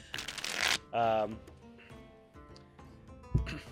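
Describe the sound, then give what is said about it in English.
A woman riffle-shuffles a deck of cards for a fortune reading, a crisp fluttering burst at the start followed by softer card handling, with voices sounding in the background throughout. “She begins to shuffle the cards.”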